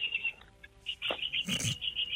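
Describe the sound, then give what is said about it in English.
Birds chirp outdoors around a man sitting under a tree, heard over his phone, in a steady run of rapid, high-pitched pulses, fairly quiet, briefly interrupted by a short rustling burst. “Dude, what is going on with these birds, He's sitting under a tree.”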